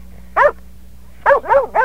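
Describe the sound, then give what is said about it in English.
A dog, Dr. Dog, barks in reply to a question: a single sharp bark, a pause, then three quick barks in a row, fairly loud over a faint low hum, with no talking. “He says no.”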